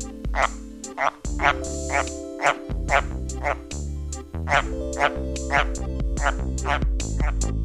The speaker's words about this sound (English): The White's tree frog calls not only to attract mates, but also to advertise its location outside the mating season. For reasons known only to the frogs, they are especially vocal after rain.